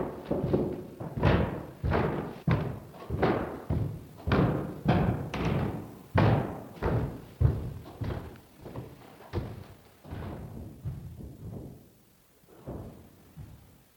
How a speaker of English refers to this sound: Heavy footsteps climbed the staircase, walked down the hall, and into her father's room.